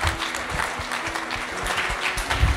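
A crowd applauds steadily, a dense wash of clapping that stays fairly loud and even throughout, with no voices standing out.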